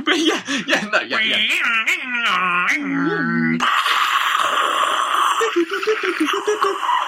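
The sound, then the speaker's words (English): A voice mimics a dial-up modem connecting: warbling, wavering tones sliding up and down for a few seconds, then a loud, steady hissing screech of static that runs to the end. “That's the modem dial-up noise.”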